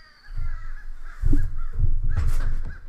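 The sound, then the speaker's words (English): A noisy flock of about 50 crows caws repeatedly outdoors, overlapping harsh calls from many birds, over a low rumbling background like wind or handling noise. “There's like 50 birds out here.”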